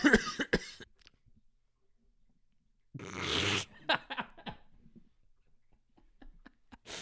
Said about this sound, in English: Dude, this cough is killing me.